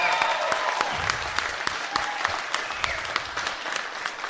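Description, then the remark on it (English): Steady applause from an audience at a comedy club in Pittsburgh, a dense patter of many hands clapping at once with a few sharper claps standing out, sustained without letting up. “Nice applause for the Improv and the staff.”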